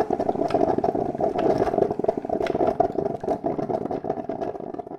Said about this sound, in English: Oh no, wait, it's just the coffee machine. Sorry.